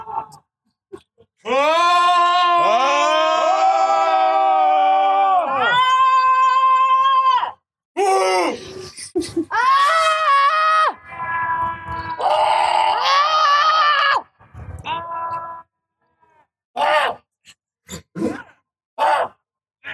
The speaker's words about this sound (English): You guys just did a scream laugh together from across the buildings.